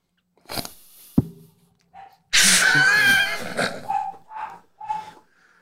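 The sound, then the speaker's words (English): A dog lets out a sharp yelp and a loud, drawn-out bark, followed by a few short, high whines, with no talking. “Well, apparently the dogs didn't like that very much either.”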